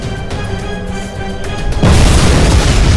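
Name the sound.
explosion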